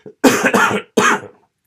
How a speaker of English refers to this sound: You're going to have to excuse me if I cough a little bit here this evening.